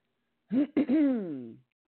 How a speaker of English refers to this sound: I notice a little cough, wanted to be heard.